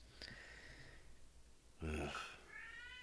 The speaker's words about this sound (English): Is that cat or baby? That's cat.